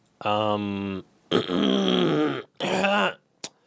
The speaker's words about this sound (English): Sorry about that. I had to clear my throat.